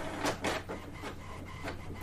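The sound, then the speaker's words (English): A printer running steadily, its mechanism producing repeated rhythmic bursts of whirring and scraping over a constant low motor hum, moderately loud, with no voices. “That is the printer! Yes, Printing.”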